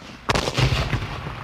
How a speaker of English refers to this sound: And then the cannons firing from the river, as well as the troops coming on the land, had never been encountered in the Waikato before.